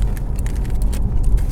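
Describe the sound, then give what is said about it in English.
Steady low rumble and soft hiss of tyres and road noise inside a moving electric car, continuous and even, with no engine roar and no voices. “I could really get used to this car, you know.”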